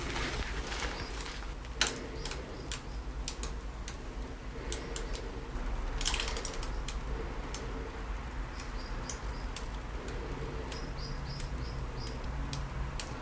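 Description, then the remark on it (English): In a surface-tension experiment, a steady stream of water falls into water mixed with dishwashing liquid, a constant wash of splashing dotted with scattered, sharp little plinks and drips at irregular intervals. No one speaks. “Okay, so you can still hear the water impacting the surface, but not as much plinking as before.”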